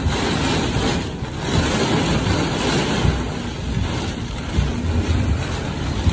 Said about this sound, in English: and now it's just raining.